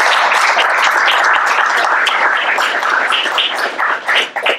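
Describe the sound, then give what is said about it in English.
An audience breaks into sustained applause for all the speakers at the close of an evening symposium, dense overlapping claps at a steady loud level for several seconds before thinning out and fading at the end. “Can we get a round of applause for all of our excellent speakers?”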